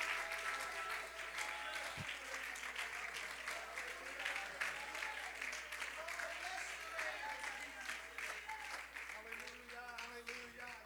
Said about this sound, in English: Come on, you're doing good. I want you to just keep it up a little while. When my children come in, I want to see, I want them to know I'm clapping my hands.